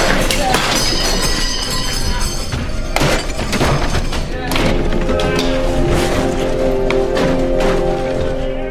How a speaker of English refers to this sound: And he knocks everything off the dresser. Then he pulls out one drawer. Then pulls out another drawer. He kicks something. I think it might be the drawer.